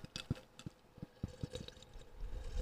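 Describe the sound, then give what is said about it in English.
A man gulps down coffee in quick succession, with about half a dozen wet, throaty swallows in a steady rhythm and soft liquid sloshing between them. No one speaks. “Guzzling. Wow, he just downed that coffee.”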